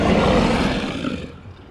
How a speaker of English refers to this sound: The Pride Ride float. Here it comes. Look at our lovely lions.